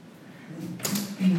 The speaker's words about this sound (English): I need to open this door.